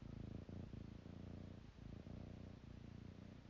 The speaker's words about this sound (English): Yes, my little kitty Sattva is purring.